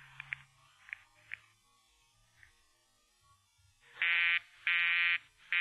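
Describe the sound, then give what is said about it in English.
A few soft clicks, then a loud, buzzy telephone busy signal from calling radio station KRNX, pulsing in even on-off bursts, two full beeps and the start of a third, with no talking. “The line's busy, sir.”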